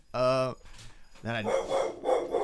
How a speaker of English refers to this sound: Hold on, we have dog. We have dog.